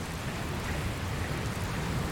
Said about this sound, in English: Ooh, it starts raining. Huh? Where'd this rain come from?